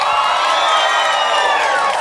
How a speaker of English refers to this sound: Thank you very much, because that cheer, of course, we'll be able to put in for all the dead spots.